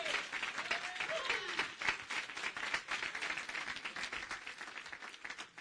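An audience claps steadily for the Lord for several seconds, a dense stream of overlapping hand claps, bright and fairly loud, with no one speaking over it.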